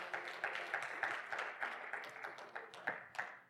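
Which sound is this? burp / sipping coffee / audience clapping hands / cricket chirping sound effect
audience clapping hands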